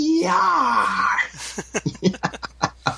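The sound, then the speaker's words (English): A voice imitates the dying scream of a man in a comic, with a drawn-out, rising wail lasting about a second, then breaks into a run of choppy, rhythmic bursts of laughter. “But then the scream, right, on the very next page.”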